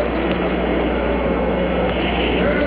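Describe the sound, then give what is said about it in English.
The Apollo 11 rocket engines roar at liftoff on July 16, 1969: a loud, steady, dense rumble that holds without a break for the whole moment, with a muffled, band-limited quality like an old broadcast recording. “5, 4, 3, 2, 1, 0, all engine running. Liftoff, we have a liftoff, 32 minutes past the hour. Liftoff on Apollo 11.”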